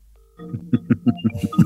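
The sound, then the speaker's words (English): A phone dialing a call to check whether another phone is switched on: a quick, evenly spaced run of about seven short electronic tones, clear, with no talking. “What you do is you go to your phone and you go, here we go. This will show whether he's turned his phone off or not.”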